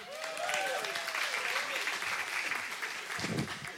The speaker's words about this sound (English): Now clap